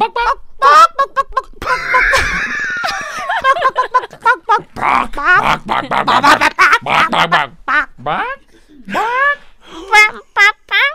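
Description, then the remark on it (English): Several voices take turns doing playful, squawky chicken imitations, rapid bursts of clucking and quacking noises overlapping with laughter and lively vocal chatter throughout. “I thought they go keep, keep, keep. You're maybe Afrikaans chickens.”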